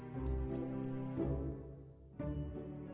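A small bell on a cat's silver collar rings in three bright, struck chimes about a second apart, each tone ringing and fading before the next, moderately loud with no talking.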